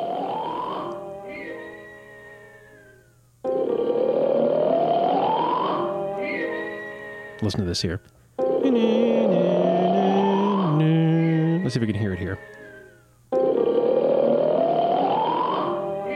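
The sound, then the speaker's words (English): A cartoon character's snore repeats in slow cycles, each long rising breath answered by a swell from an orchestra scored to the snoring and a falling whistle-like exhale. A voice speaks briefly near the start. “they actually had an orchestra and they scored the orchestra to the sound of Popeye snoring”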